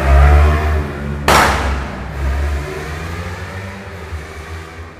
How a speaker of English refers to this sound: That is material sound vibration. I don't know whether you have heard it. Extremely loud noise of a motorbike. So that's material vibration.